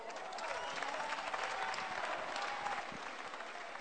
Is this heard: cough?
no